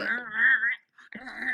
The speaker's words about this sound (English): What was that? What was that growling? You got phlegm? Is that phlegm?